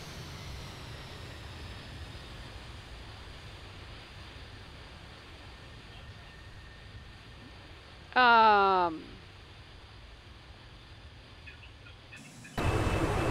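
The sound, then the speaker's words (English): A steady low engine drone runs throughout, broken by a sudden loud airplane flyby at about 23,000 feet altitude: a brief roaring whoosh whose pitch slides sharply downward as it passes, then fades back into the drone. “I wonder what the flyby sounds like.”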